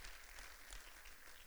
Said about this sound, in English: If you believe that, I need you to clap a little bit by faith here tonight.